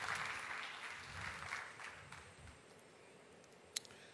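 An audience applauds for the children with dense, steady clapping that starts strong and gradually thins out over a few seconds, ending with a single sharp clap near the end.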